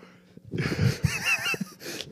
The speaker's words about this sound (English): When it's on Spill Your Beans, I'm fine. But when it's my topic, I start to have like yawning issues.